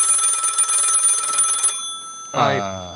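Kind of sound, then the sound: household object, telephone bell ringing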